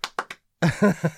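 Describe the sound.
Three sharp hand claps in a quick, rhythmic pattern, like the beat of a song, followed by a voice chanting a short melodic phrase.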